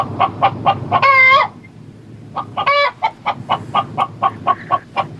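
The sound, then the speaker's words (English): A chicken loose in a room, cornering a man, clucks in quick, rhythmic bursts, broken by two louder, drawn-out squawks and a brief quiet pause midway; no one speaks. “I'm in a corner trapped by a chicken.”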